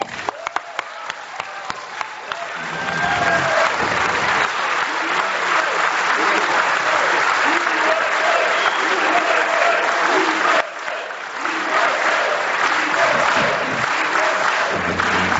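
crowd, audience standing

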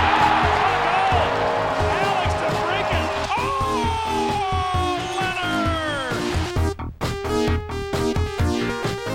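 crowd, hockey arena crowd cheering

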